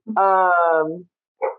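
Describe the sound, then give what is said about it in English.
A dog lets out one long, drawn-out bark that trails off, then a short, softer yip follows after a brief pause. Fairly loud, with no one talking. “Sorry, my dog's barking.”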